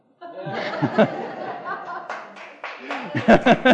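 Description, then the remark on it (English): A Presbyterian church audience laughs loudly and chuckles as scattered claps break out, a few sharp hand claps rising through the laughter toward the end. “You know, as long as I'm listing stuff we need to do, folks, we need to learn to clap.”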